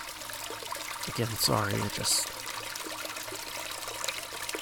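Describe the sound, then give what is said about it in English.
A toilet flush keeps water rushing and trickling steadily in the background, a constant hiss throughout, while a person briefly speaks over it. “How long of a flush is that toilet?”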